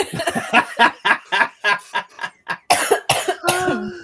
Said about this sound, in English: Oh, yeah, now she's playing up the coughing.